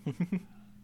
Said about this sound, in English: Hold on. Dogs are barking.